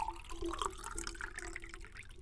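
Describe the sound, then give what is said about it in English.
Liquid Death, kept in the freezer, pouring steadily into a cup, a continuous splashing trickle with a faint ringing tone, lasting a couple of seconds with no voices. “And in here, I'm going to pour in.”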